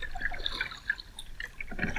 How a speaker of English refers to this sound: I just wanted to kind of give you guys a little bit of a relaxing, peaceful river time.